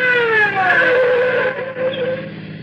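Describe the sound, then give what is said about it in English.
A patrol car's siren wails loudly on Old Mamaroneck Road, its pitch sliding downward over the rumble of a car engine, with no one speaking. “Hear that? Patrol car? I told you. Here comes our speeding ticket.”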